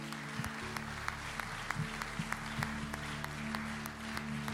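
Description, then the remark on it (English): An audience at a church service claps together in steady, sustained applause as a hand clap of praise to Jesus. A few sharper claps stand out over the broad wash of hand noise, with a low, constant hum beneath. “Come on, give Jesus a hand clap of praise.”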